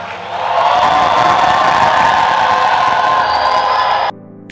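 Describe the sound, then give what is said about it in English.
An audience erupts in loud, sustained cheering, clapping for Jesus and shouting to the Lord, a dense wall of voices that swells in quickly and holds for about four seconds before cutting off abruptly. “Somebody clap for Jesus. Clap for Jesus. Give the Lord a shout.”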